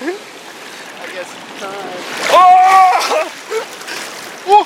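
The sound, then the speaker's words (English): Ocean water surges and splashes steadily over rocks as the water keeps rising, a continuous rushing wash, with people's voices calling out loudly over it midway through as someone steps off a rock into water up to chest height. “And so I step off the rock into the water that was ankle height, and it goes up to my nipples.”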